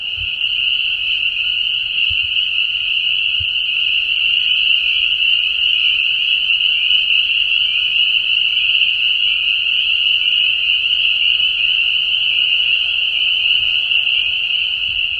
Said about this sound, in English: Peepers are hard because they drowned out other noises. So some of the frogs make snoring noises, and that's what I thought I might hear. Pickerel frog was a possibility here. Might hear leopard frogs. They make a nice snoring sound.